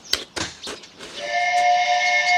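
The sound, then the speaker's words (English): A steamboat whistle from a boat just coming around a bend on the river below blows after a few short hissing bursts, settling into a long, loud, steady harmonic tone that holds to the end without fading. “That, my lad, was a steamboat whistle.”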